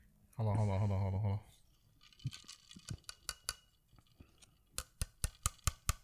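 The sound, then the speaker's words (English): Metal knocking and scraping against metal, on an object that seems partly plastic and partly metal, in a series of sharp clicks and clinks, picking up into a quicker, louder run at the end, after a short low hum at the start. “You hear that? Metal on metal.”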